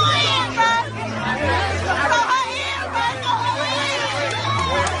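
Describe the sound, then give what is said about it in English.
A crowd of voices shouting and clamoring over one another in a loud, unbroken din for the full five seconds, with a steady low hum running underneath. “What are they yelling? It's just pandemonium.”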